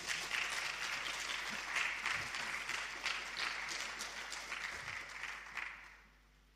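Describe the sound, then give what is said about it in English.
A crowd applauds steadily for several seconds, a dense wash of many hands clapping at once, then the clapping thins and fades out near the end. “I think you're allowed to clap if you want.”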